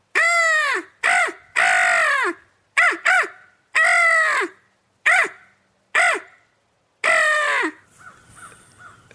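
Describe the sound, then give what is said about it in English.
A voice imitates crow calls to call crows in: about eight loud, harsh caws in quick, uneven succession, trailing off into a few fainter, softer caws at the end. No talking. “Try to call those crows in.”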